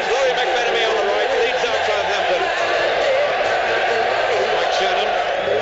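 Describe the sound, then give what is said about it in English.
A huge stadium crowd of about 100,000 roars continuously as the players come up the tunnel before the season's biggest match. It is a dense wall of many voices blending into a loud, steady din that never lets up. “Blinded by the light. A tremendous roar.”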